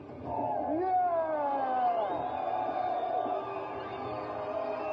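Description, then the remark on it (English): A crowd cheers for the returning sun god in a steady, sustained roar, with many overlapping voices whooping in rising and falling tones and holding at a fairly loud level throughout. “So, let us give a rousing cheer for the returning sun god.”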